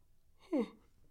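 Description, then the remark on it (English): A short, breathy yawn: one brief voiced exhale whose pitch slides downward, standing out clearly against a quiet background with no talking. “Yawn there.”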